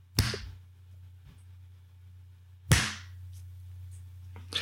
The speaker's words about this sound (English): Why'd you just clap? I don't understand. I did that so that hopefully it makes it easier to align the audio tracks in post.